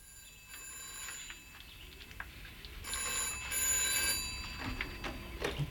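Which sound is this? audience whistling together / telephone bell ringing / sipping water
telephone bell ringing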